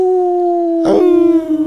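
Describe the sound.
A person howls like a dog to get dogs to howl along, holding one long, steady wavering note, broken briefly by a short rough burst partway through before the howl carries on.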